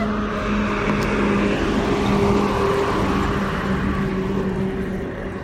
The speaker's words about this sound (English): And you're getting the full Brooklyn vibe today with cars with the windows rolled down and music and trucks.